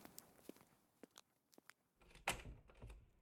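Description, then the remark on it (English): Someone knocks on a door: scattered, sharp, fairly quiet raps, then a louder thud near the end over a low rumble. Nobody speaks. “Someone's at the door. I'll get it.”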